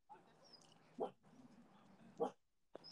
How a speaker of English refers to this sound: Oh, sorry. Bandit's barking. Will you tell him to be quiet? Quiet, bandit. Quiet, bandy.